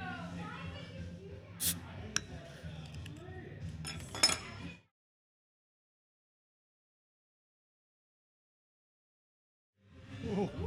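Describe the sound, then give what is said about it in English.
Glassy clinks and clatter, then a sharp hissing burst as a bottle of Belgian Brett beer is opened and poured into a glass, very foamy, over low murmuring voices. A long silence follows before the clinking resumes. “Let's pop this open.”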